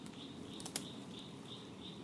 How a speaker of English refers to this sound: That's the sound of Blanchard's cricket frog.